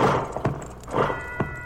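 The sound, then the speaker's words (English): Horse hooves clip-clop at a slow, steady walking pace, a few distinct clops ringing out at moderate volume over a soft background rumble, with no one speaking. “With his fiancée safely mounted on the horse of their new friend, the tension of the previous few days falls away, and soon the party comes in sight of a magnificent castle.”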